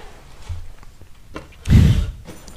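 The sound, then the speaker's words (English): A door is pulled open for arriving visitors with one loud, rough burst of rattling noise, preceded by a few faint knocks and handling sounds. “Go get the door.”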